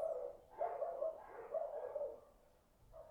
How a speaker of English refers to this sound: They're outside my house. And I keep waiting for them to finish, but I might be here some time. So you know what? Let's crack on. Ignore the barking of dogs if you can.